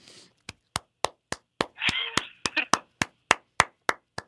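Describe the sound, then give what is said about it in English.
One person claps hands in a steady, brisk rhythm, about fourteen sharp claps, with a brief wordless vocal outburst overlapping the claps midway, imitating how audiences clapped during the film Civil War. “Me clapping like all the people did during Civil War every time happened that wasn't, like, I don't know.”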